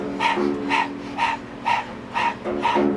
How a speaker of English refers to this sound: It sounds like this. So if you know breath of fire, allow yourself to jump in right now. And if you're new to the breath, you're gonna open your mouth, stick out the tongue, and begin to pant rhythmically like a dog.